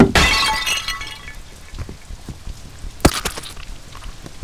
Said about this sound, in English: Oh, that Napoleon bust there on the pedestal? Nap who? Napoleon. Another overly ambitious little general. Just knock that on the floor